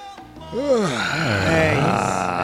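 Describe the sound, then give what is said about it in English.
A person gives a long, drawn-out yawn, the voice rising and falling in a wavering groan for a couple of seconds before trailing off. “Give an old yawn for him.”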